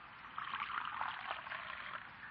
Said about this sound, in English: Will you pour me some coffee